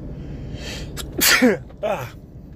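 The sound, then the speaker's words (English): A single loud sneeze: a sharp inhaled buildup bursting into a noisy explosive release, followed by a short breathy exhale, with no talking. “actually sneezed.”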